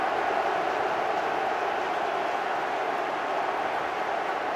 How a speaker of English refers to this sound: I think it was certainly booing, and then a fair amount of cheers as well, more so than the Riverside.